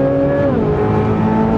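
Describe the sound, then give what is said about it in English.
Loud engine roar of a C8 Z06 and a GT500 accelerating hard in a drag race at a drag-and-drive event, a high-pitched sustained whine with a brief pitch dip like a gear shift, continuous and without speech. “C8 Z06 VS GT500 U drag”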